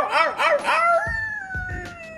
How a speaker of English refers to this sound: I even left the dog upstairs. Dog barking.